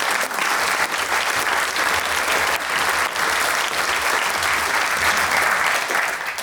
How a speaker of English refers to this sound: Yeah, you should clap